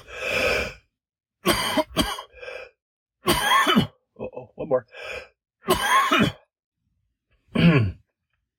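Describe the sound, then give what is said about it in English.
A string of loud coughs and raspy throat clearing comes in separate harsh bursts spread over several seconds, with a short spoken phrase slipped in between them. “I need a cough.”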